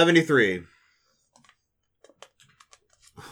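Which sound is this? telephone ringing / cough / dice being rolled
dice being rolled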